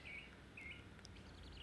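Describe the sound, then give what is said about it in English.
A birdsong phone ringtone chirps clearly, with two bright trilling phrases followed by quicker tweeting notes, fairly loud over a low background hum. “It's the birds. What the absolute fuck is that? It's a ringtone.”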